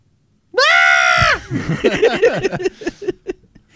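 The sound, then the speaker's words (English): A person lets out a loud, high-pitched sustained scream lasting under a second, imitating an illusory elf standing at the top and screaming, followed by a few seconds of fast, animated talking. “I'm gonna do a minor illusion an elf standing at the top, and it's gonna scream like.”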